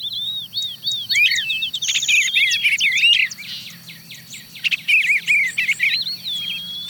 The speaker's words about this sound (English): Okay, who's that? There's a catbird, sounding like a cat mewing.